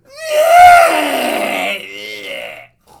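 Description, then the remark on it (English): A person vocally imitates a queen's shrill cry on seeing a rat in her soup bowl, somewhere between a horse's neigh and a pig's squeal: a loud, strained, wavering squeal of about two and a half seconds, sliding downward and ending in a shaky, tremulous tail. “And I know specifically it was a sound between the neigh of a horse and a squeal of a pig. Something like this.”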